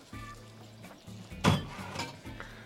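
Fairly quiet pour of champagne into a glass filled with crushed ice, with a sharper clink and splash midway and a soft bubbling hiss trailing after.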